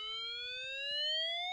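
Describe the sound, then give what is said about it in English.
A toy siren alarm from a kids' room, like an ambulance, sounds one continuous, buzzy electronic wail that glides steadily upward in pitch, with faint low handling noises underneath. “That's going to symbolise death. Because it's like an ambulance.”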